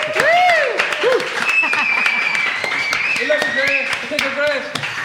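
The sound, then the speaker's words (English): A room full of people applauds steadily for the winners of a competition, the clapping dense and sustained throughout, with a few whoops and cheering voices rising above it and some people shouting at the back of the room. “In second place, on 12 points, can we have a medium round of applause for Kevin McGahern?”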